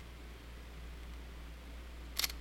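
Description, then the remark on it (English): A Canon R5 mirrorless camera shutter fires once near the end, a quick crisp double click, after a stretch of quiet low hum with no one speaking. “The shutter was literally locked up. It was locked up like that.”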